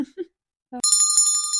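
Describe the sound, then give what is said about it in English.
A bright, metallic bicycle bell rings once with a shimmering, sustained tone, preceded by a couple of brief vocal sounds and a short pause. “Did you hear that bell?”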